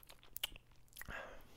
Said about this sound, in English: Ice cold refreshing water. Gotta get the lip smack, dude.